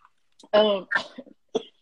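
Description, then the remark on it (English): A man coughs and clears his throat in a short, rough burst of two or three hacks, then one last small cough after a brief pause. “If he had quit drinking my tea, he wouldn't be coughing.”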